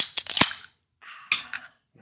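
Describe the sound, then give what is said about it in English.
Two drink cans crack open one after the other, each a sharp metallic pop followed by a short burst of fizzing hiss, with a brief pause between them. “No, we crack our cans in a second.”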